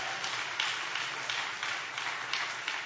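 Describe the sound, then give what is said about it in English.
An audience applauds, many hands clapping together in a dense, steady crackle with small surges, continuous for the whole stretch and with no voices over it. “Can I get a hand clap from the Lord?”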